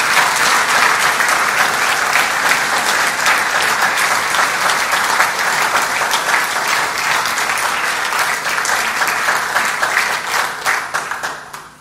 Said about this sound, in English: Would you give them a round of applause for all they've done?